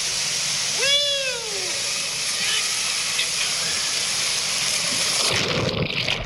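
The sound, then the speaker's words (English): Steady noisy background with a short meow-like call early on, then near the end a splash as a phone filming a two-person tube ride down a water slide drops into the pool and sinks to the bottom, followed by a muffled, rumbling underwater sound. “Now, I didn't plan on dropping my phone to the bottom of the pool, but you'll hear it splash in at the end.”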